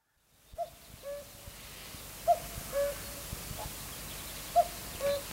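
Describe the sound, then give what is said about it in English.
A flock of birds circles round outdoors, some of them landing, with short two-note cries repeating three times at steady intervals, fairly clear over a low, rumbling background of wind and faint noise. “And they're circling round, some of them landing. Apparently he gets up to 1,200 by the end.”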